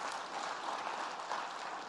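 Soft, polite applause from a church audience after the announcement that 161 people became new Jesus followers in the last 12 months, a steady even patter of light claps with no cheering, fairly quiet and sustained throughout.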